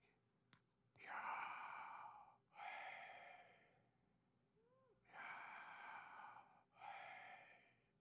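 Two pairs of loud, breathy mouth breaths, each a rushing inhale followed by a matching exhale, made with the mouth slightly open and tongue still while saying half a word breathing in and half breathing out, with a short pause between the pairs and no talking.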